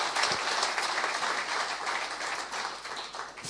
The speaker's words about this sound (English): Will we give a round of applause to those who come in here for the first time?